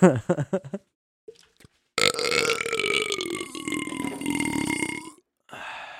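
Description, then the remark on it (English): A loud, drawn-out burp rumbles for about three seconds, following a brief burst of talking and a short pause, with quieter voices resuming right after. “I feel like I haven't had any good burps recently.”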